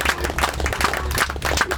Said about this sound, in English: Round of applause.